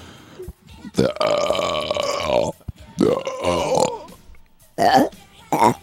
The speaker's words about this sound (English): What language do you want to speak? You want to speak in burps? That's that's pretty usual for around here. I'll grant that. Do you mind if I also ask the questions in burp form then?